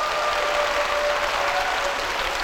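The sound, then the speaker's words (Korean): Steady audience applause welcoming a speaker fills the whole stretch, a dense, even wash of many hands clapping at constant loudness with no voices over it. “박수로 맞아주세요.”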